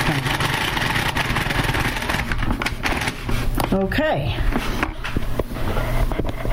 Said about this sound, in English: Anyway, here we go. I'm trying to turn the crank and watch the cards go down.